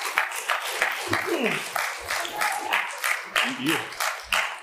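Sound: audience applause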